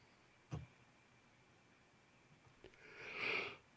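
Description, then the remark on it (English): A soft, drawn-out yawn with a breathy exhale that swells and fades near the end, preceded by a brief sniff-like click; quiet, no talking. “Apologize for the yawn.”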